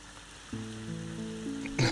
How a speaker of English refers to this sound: Ulzo Brotex does feel calmed by the rain, and he will limp away as quickly as he can towards Ravengrow.